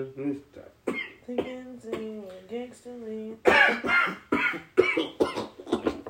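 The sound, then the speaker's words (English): A run of harsh coughs and throat clearing, several rough bursts in quick succession, coming right after a few seconds of voiced vocal sounds. “You see, I didn't cough when I was smoking.”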